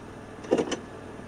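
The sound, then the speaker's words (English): A short mechanical clunk and click inside a car as the gear shifter is put into drive with a foot on the brake during a driving lesson: two quick sounds over a quiet cabin hum. “Okay, put your foot on the brake and carefully put the car into drive.”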